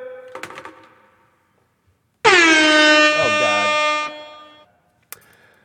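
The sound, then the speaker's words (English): A single loud, sustained air horn blast blares for about two seconds, harsh and brassy, then cuts off. Faint voices or noises come just before and after it. “And then I blew your ears off with the air horn.”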